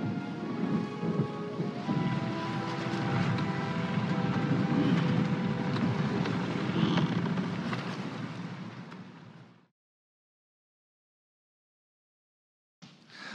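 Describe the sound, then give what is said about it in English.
A movie clip of a loud, dense storm of pouring rain with deep thunder rumbling throughout, fading slightly before cutting abruptly to silence, then briefly returning at the very end. “It would be the perfect storm.”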